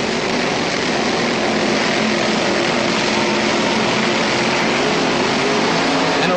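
Two Top Fuel dragsters, driven by Shirley Muldowney and Clayton Harris, roar from the staging beams in the first pair of Top Fuel Eliminator at the Gator Nationals: a loud, dense, raspy, unbroken blast of engine noise holding steady from start to finish with no voices over it.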